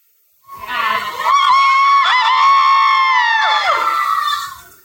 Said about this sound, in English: It'll be up this Friday, so if you guys want to listen to yourselves, cheer. And also cheer really loudly so you can hear yourself.